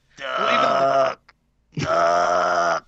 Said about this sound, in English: Even when it sounds like it's almost like a dinosaur, it'll come back. Screeching, unnatural sound.